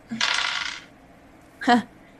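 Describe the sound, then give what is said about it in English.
Dice rattle and tumble across a hard table for about a second, followed by a brief, sharp clack a moment later. Fairly loud, with no talking. “Mine is a struggle bus because I had the dice but not out of the bag.”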